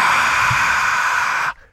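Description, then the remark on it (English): A steady, breathy rush of air lasting about a second and a half, like a long exhaled gasp, voiced to imitate the roar of a crowd, then cutting off abruptly into silence. “That's the crowd. Get it? Oh, cool. Yeah, sounds like breathing.”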